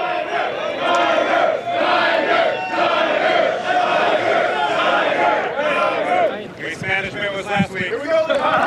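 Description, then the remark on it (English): A rowdy golf crowd cheers and hollers at the opening tee at Riviera on Thursday as Tiger plays, a dense, loud roar of many voices sustained throughout with scattered shouts rising above it. “You got to check out some of the sounds from the opening tee at Riviera on Thursday when Tiger was finally able to play some golf.”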